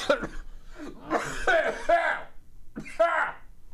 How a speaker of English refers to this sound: I got Whoopi's smoker's cough just by impersonating her.